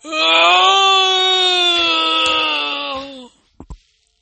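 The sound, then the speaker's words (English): A man lets out a loud, anguished, inhuman scream like the cry of a dying animal, held for about three seconds at a strained, slowly sagging pitch, then cut off and followed by two quick dull thuds of banging on a door. “The banging on the door continued, and then we heard a man scream.”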